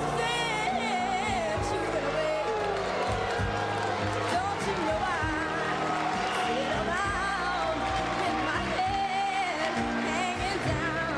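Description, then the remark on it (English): An audience at Amateur Night at the Apollo boos a 13-year-old singer as she sings, a dense, sustained wall of jeering voices with shouts and hoots rising out of it, loud and unbroken for the whole stretch. “Then … gets booed.”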